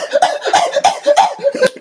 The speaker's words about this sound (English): Oh, I'm sorry, I didn't quite get that. Can you cough again? He's checking for asthma. He's making sure you don't have asthma. He's like, wait, cough again.